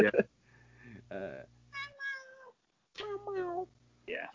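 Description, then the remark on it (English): A cat named Dino meows insistently for food several times in a row, with drawn-out, rising and falling cries separated by short pauses. “Dino just wants food.”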